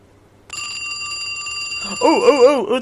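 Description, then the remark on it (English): A phone rings with a single bright, metallic bell tone that sustains for a couple of seconds, and a voice begins speaking over it toward the end. “actually I have a phone ringing sound effect, don't I?”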